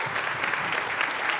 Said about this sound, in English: Okay, so hold up the duvet. Yeah, round of applause.